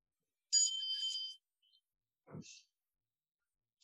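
A meditation bell rings once with a bright, high, shimmering tone that holds for about a second, followed after a pause by a soft low thump and a brief faint chime.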